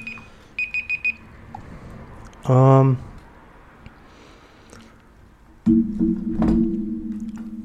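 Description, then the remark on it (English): The car alarm of a 1996 Honda Civic goes off: three quick high-pitched beeps, a short harsh buzz, then a loud, steady droning blare that continues to the end. “Well, that fucking alarm is useless.”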